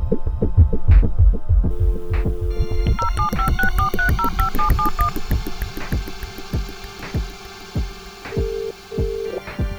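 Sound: telephone keypad dialing tones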